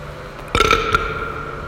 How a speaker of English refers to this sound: That was my butt. My butt has a throat and it can burp.